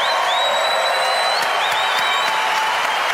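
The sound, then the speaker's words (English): A large audience applauds loudly and continuously, with cheers and a few high whistles rising above the dense clapping, for guests Richard Dawkins and Ricky Gervais at the end of an evening event. “Ladies and gentlemen, please give a huge round of applause for two wonderful guests, two amazing people, Richard Dawkins, Ricky Gervais!”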